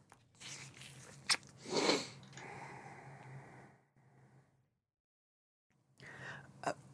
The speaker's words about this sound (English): Let me take a sip of tea and think about that. Ponder over tea.